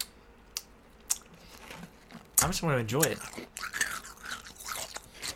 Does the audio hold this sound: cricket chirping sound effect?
no